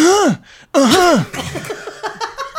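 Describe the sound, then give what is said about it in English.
A voice performs an exaggerated imitation of a famous actor coughing: two loud, throaty, pitch-bending hacks, then a quicker run of short, rough bursts that trail off, clear. “Yeah, I can also do other famous actors coughing if you want.”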